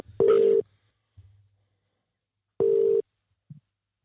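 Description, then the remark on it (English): An outgoing phone call rings on the line: two short, steady electronic ring tones about two seconds apart, clear and fairly loud, with faint low thumps between them. “Okay, it should start ringing.”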